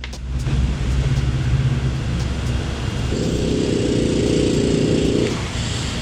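Basil, a small dog, snoring: a low, continuous rumbling drone with a rougher, buzzier snore rising in the middle and lasting a couple of seconds. Fairly loud and steady, with no one talking.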